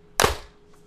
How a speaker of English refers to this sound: All right, we ready for clapping? I'm ready to clap. Yes. Let's do it. 3, 2, 1.